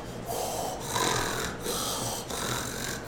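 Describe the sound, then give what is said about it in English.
A voice imitates a sleeping bugbear's snoring: loud, raspy snores repeating in a steady rhythm, about four breaths in quick succession, with no other talking. “I love that bugbear snoring impression.”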